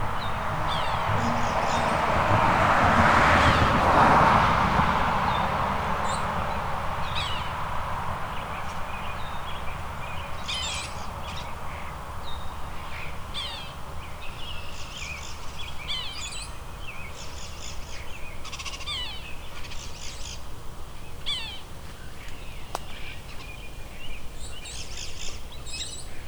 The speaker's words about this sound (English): The sapsucker doing its kia again. There we go. Right when the cars go by.